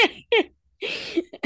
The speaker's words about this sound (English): Sorry, guys, I have this 100-day cough or whatever it is that is going around right now